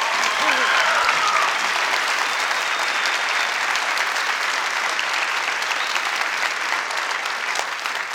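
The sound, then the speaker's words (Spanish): An audience applauds steadily, a dense, even wash of many hands clapping at a constant loudness for about eight seconds, with no break and no clear individual claps standing out. “Pero aplauda como si fuera.”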